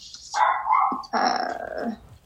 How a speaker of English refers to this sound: I'm sorry, my dog's barking in my bedroom.